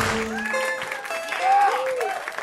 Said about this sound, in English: Get ready to clap your hands together